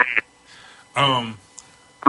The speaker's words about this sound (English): damn, I'm getting a mad delay. I'm getting a super bad delay. Let me turn that down.